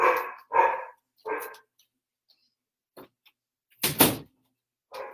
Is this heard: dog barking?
yes